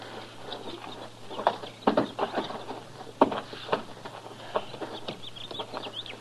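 Irregular hoof clops of a horse with a man riding it, a few sharp knocks scattered among softer shuffling steps, while birds chirp faintly over a low steady hum.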